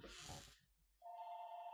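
telephone ringing

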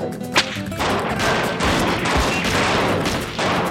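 volley of gunfire

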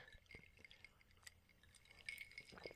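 glasses clinking

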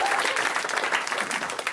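audience applause

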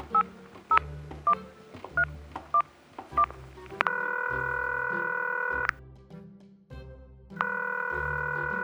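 telephone being dialed

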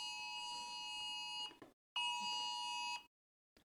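phone alert tone

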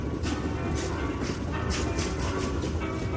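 train sound effect

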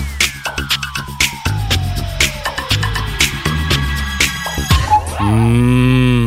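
cow mooing

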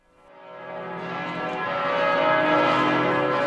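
church tower bell ringing

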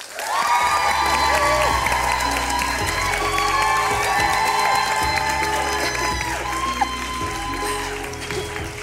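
audience applause and cheering

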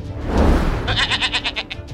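goat bleating

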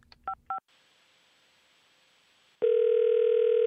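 telephone dial tone

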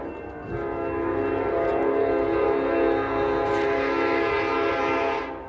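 train passing with horn

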